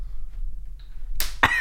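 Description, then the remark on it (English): A sharp hand slap, used as a recording sync marker, cracks out after a stretch of quiet low hum, followed almost immediately by a second brief, bright burst of noise. “Just slap my hand.”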